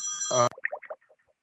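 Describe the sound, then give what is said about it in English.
A phone rings briefly with a bright electronic tone, followed by a quick descending run of chime-like notes that fade away. Fairly clear, with no talking. “I guess you accidentally went into pause when my phone rang.”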